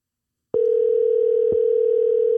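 A steady electronic phone tone starts after half a second of silence and holds evenly to the end: a single clear, moderately loud ringback hum from an outgoing call placed live on the show Cheshire's Place after pressing a button, with no voices.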